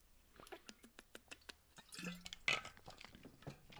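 drinking water

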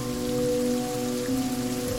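rain falling

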